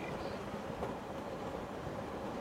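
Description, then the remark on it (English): A fast train arriving at a station rumbles along at a steady, even loudness, a continuous broad roar with low rattling underneath and no voices. “Well, they don't call it a fast train for nothing.”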